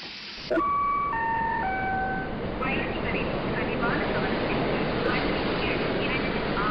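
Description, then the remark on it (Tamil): A train pulls into a station with a loud, steady rushing roar that starts abruptly, while a brief run of descending high tones rings out early on. “ஏ குட்டி, ஏதோ ட்ரெயின் வருது பாரு, தள்ளி நில்லு, பிளாட்ஃபாரத்தை ஒட்டி நிற்காத, தள்ளி நில்லு, தள்ளி நில்லு.”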